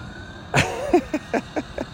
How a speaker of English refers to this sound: I'm in a parking lot. You can hear that? You guys get that whistling muffler? Yeah, that's going to make some noise.